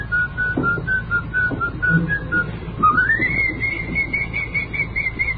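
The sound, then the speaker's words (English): A person whistles a tune, a string of short wavering notes that slide upward into a higher, sustained melodic line, with a low steady hum underneath and no talking. “They don't have whistling programs anymore, either.”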